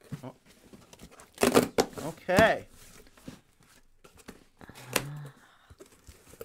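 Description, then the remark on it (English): A box package from Absurd Bird, sent by a viewer, being opened: loud bursts of tearing and crinkling paper, a few sharp rips in quick succession, then a brief scrape, with people talking quietly in between. “So can you go ahead and open this up?”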